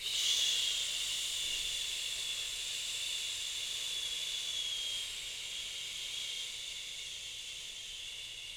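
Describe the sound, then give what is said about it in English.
A long, steady whooshing exhale pushed out through sealed, pursed lips as part of a breathing exercise, counted for eight after breathing in for four and holding for seven, breathy and hissing, lasting about eight seconds and fading slightly toward the end, with no talking. “And now you're going to whoosh for eight.”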